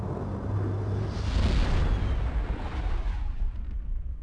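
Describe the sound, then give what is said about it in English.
A spaceship, an Imperial shuttle, entering the atmosphere far above in the sky on its way down to the planet's surface: a deep, rumbling roar with a hissing edge that swells over the first two seconds, churns steadily, then thins and fades near the end. No voices. “As you are crossing the tar pits again, Castian, you hear a sound far, far above you up in the sky. The sound of a ship entering atmosphere.”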